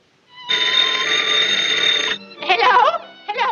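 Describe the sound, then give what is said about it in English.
A telephone bell rings in a played cartoon scene in one loud, continuous burst lasting under two seconds, then cuts off as a voice begins speaking; the grandmother character is making a phone call. “And then she makes a phone call, and this is what she asks for on the phone.”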